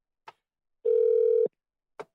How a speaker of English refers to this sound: So let's give it a dial. Here we go.